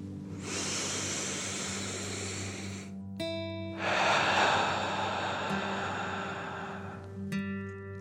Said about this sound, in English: Breathing in through your nose and breathing fire out your mouth. Again, deep breath in and out.